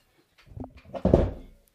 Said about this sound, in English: Your LaCroix that is unopened got knocked over because of your fucking...